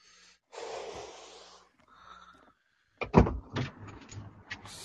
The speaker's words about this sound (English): I hear somebody getting in a car. Hey, I'm trying to steal this car from this guy.